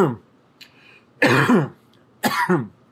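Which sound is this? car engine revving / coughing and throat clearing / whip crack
coughing and throat clearing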